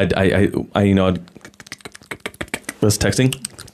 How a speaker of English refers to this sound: That's texting right there. Spot on sound effects because we only have 4 sound effects and there's no texting sound effects.